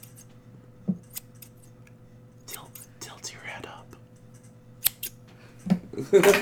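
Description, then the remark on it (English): Close, crisp scissor snips in a few scattered bursts over a low steady hum, with a quiet voice murmuring briefly in between. “Scissors sound like scissors.”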